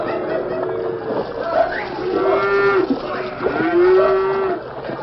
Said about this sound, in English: At the river's narrowest point, a small ford half-hidden by thick underbrush, there was an unmistakable sound, the confused plunging and splashing of cattle on the move.